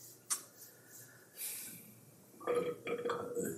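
A loud, drawn-out burp close to the microphone, rumbling for about a second after a brief click and a moment of quiet rustling.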